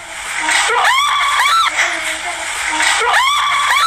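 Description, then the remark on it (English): Several people scream in fright after opening a door onto a huge shadowy figure and shutting it, shrill voices rising and falling in overlapping bursts, loud over a constant noisy background, with a second wave of screaming near the end. “what happened that led to them screaming in the audio, was that right as they heard the humming, they opened a door and there was like a huge, like a shadow person on the other side, and like shut the door in their faces, and they just screamed.”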